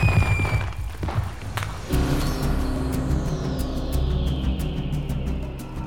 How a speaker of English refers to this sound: Oh man, I love fireworks! And there comes the police to see what the fuss is.